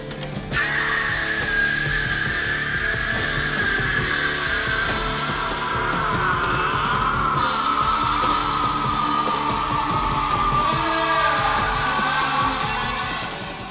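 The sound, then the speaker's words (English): A long, sustained scream in a film cuts through a loud, dense rock band, holding steady for over ten seconds while crashing drums and distorted instruments pound underneath. “I'm going to play a clip that you gave me, and I've got it labelled as …'s Scream”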